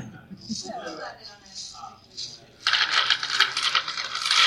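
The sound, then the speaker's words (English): Dice rattle and clatter inside a giant Crown Royal cloth sack, a dense, continuous shaking that runs loud through the last couple of seconds, after a stretch of talking voices. “has a giant Crown Royal sack full of dice.”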